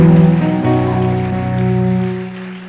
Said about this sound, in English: In the name of Jesus, give the Lord a shout, a clap. Then have your seat. Can we clap our hands for Jesus once again?